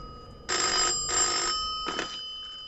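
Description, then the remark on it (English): A telephone bell rings in two loud, steady bursts of about half a second each, followed by a shorter, weaker third ring that cuts off, with no talking. “No! It's ringing!”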